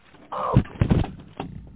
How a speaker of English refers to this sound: Oh, Jesus, help me, Lord. I done fell out this chair. Oh, Jesus.